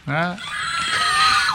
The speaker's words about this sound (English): pretty much that scream. California screaming. There's a button. Scream.